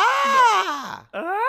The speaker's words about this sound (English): Actually, did you know the Wilhelm scream shows up in 95 movies? The Wilhelm scream is, in case if you don't know, it's a pre-recorded canned scream.